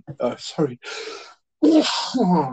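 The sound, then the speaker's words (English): A sudden sharp sneeze bursts out amid conversation, with people speaking just before and after it. “excuse me. Bless you.”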